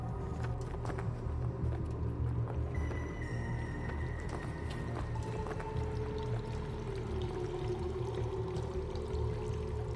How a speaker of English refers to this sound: You goblins have quite the setup here. An underground river. There's more to this mountain than we knew.